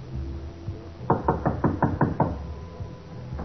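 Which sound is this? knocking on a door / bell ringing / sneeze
knocking on a door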